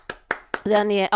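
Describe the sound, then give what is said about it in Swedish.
Three sharp, evenly spaced hand claps by a person applauding someone's singing, followed immediately by a person's sustained voice. “Ja, alltså, jag applåderar.”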